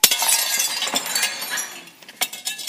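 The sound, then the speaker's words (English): A ceramic pot, after being tapped, shatters with a sharp crash, followed by scattered clinking and tinkling fragments and a couple of further bright cracks as pieces settle. No one speaks. “I didn't think it would shatter so bad.”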